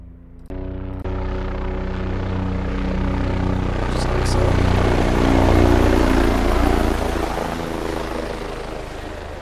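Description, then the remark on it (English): A helicopter passes by, its rotor thumping and engine droning as it swells to a peak near the middle and then slowly fades, loud and steady throughout. “So I'm going to add for my audio files, some Echo Collective helicopters, just a few of them.”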